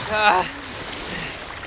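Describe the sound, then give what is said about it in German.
Rushing water hisses steadily as a raft speeds along a wild river through a narrow gorge. A short wordless shout rises over the spray at the start, then the churning noise carries on alone. “Als sie die enge Klamm verließen und der wilde Fluss ruhiger wurde, hatten sie den Vorsprung auf ihre Verfolger um einige hundert Meter vergrößert.”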